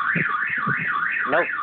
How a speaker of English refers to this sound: Yes! An alarm. We needed it. Yes! Thank you. It wouldn't be the show without it, really. Sorry, I opened my patio door and I forgot that I had my alarm still set. It's fine. We're fine.